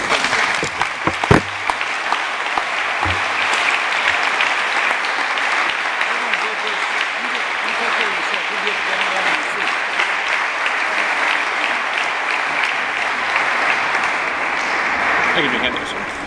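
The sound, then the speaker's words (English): An audience at an afternoon event claps steadily for about sixteen seconds after speakers' remarks, a dense, even wash of applause that holds a constant loudness from start to finish, with a few sharper pops near the beginning. “Another round of applause, ladies and gentlemen.”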